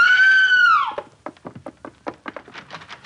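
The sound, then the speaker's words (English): A woman lets out a loud, high-pitched scream of alarm lasting about a second, sliding down at the end, followed by a quick series of short, sharp bursts, as she raises the alarm that her father is dead. “She yelled at everybody.”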